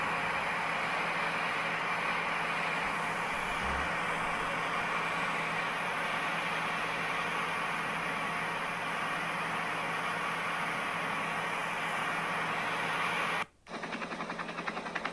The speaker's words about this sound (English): Is this a helicopter? Yeah, it's a helicopter.